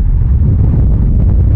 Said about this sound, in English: Where are we? The Golden Gate. It's very windy. It is very windy. I don't think I'm gonna catch a virus. It's too fast. I think there's too much air.